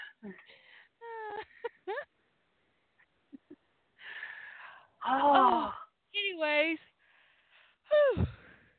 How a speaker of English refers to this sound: whew. Sorry, dudes. I know that's super contagious. By the way, if you didn't yawn with me or yawn after me, you're a sociopath. Just to let you know. Not yawning when someone else yawns is a sign of sociopathology.